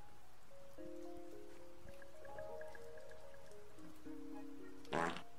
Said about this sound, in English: Thanks for the fart.